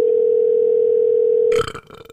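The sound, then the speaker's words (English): A telephone ringing tone on a call to a GameStop store in Patton Creek: one steady, mid-pitched hum held for about a second and a half, then cut off abruptly by a brief rustling clatter as the line connects. “Let's call GameStop right now and see if we can buy a stock from them, the store.”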